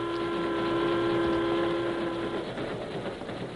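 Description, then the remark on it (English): A train rumbles along with a loud, steady multi-tone horn chord sounding for a couple of seconds, then cutting off and leaving the rolling mechanical rumble of the cars. “Here come train now.”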